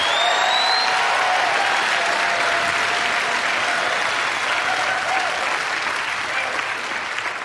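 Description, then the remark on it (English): A church audience claps steadily for several seconds as a clap offering to the Lord, a dense, sustained wash of many hands applauding together, with faint crowd murmur beneath and a brief high whistle-like tone early on. “Somebody give the Lord a clap offering.”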